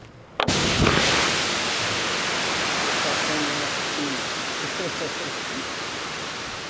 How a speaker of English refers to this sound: Go ahead, you ready? This is putting the fire out here.